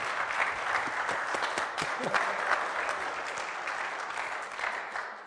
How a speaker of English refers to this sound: Thank you very much. I think he deserves a round of applause, don't you?